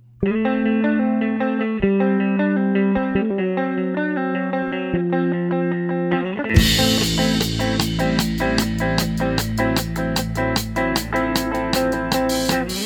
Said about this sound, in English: take a quick break and spin a few more tracks from some of the bands that are playing the Benefit for Pat out at Q Bar Glendale Heights on October 4th. This is a track from the guy who's organized the show.